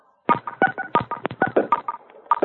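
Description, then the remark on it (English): A quick, uneven run of about a dozen short electronic telephone keypad tones as callers on a call-in line press keys on their phones, fairly loud, with no one talking. “If you would, please press star 6 to mute your personal phone.”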